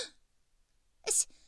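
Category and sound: human body sound, sharp gasp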